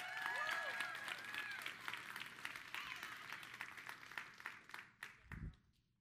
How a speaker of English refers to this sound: So please give a great applause to Savannah Smith.